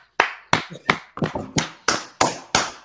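One person claps their hands for Art Rooney, steadily, about nine loud, sharp claps at an even pace, with a quick flurry of lighter claps in the middle. No talking.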